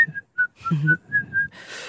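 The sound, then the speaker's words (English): A woman whistles a short tune of several clear, sustained notes at a steady pitch, moderately loud, with a soft breathy hiss trailing at the end. “She can whistle really well.”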